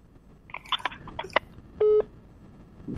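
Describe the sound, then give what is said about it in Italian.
A short, steady electronic telephone beep sounds once, clear and fairly loud, following a few scattered clicks and handling noises, as a caller is put on hold during a phone call; no one speaks. “Mi ha messo in attesa.”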